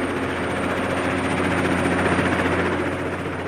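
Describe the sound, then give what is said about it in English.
A helicopter's engine and rotor roar steadily as it touches down on a landing pad on the top deck of a rig, a loud continuous whine over a deep low hum, with no voices present. “The helicopter touches down on a landing pad on the top deck of the rig.”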